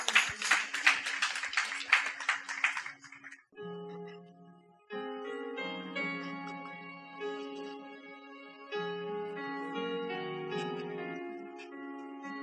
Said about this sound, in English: Let's appreciate him with a clap offering.